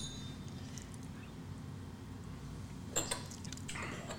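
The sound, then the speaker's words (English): Shot glasses of Jameson whiskey clink together in a quick toast, a couple of bright, sharp taps close together and then a softer knock, set against a quiet room hum. “Sorry, I'm a little slower than you guys on the Jameson shot.”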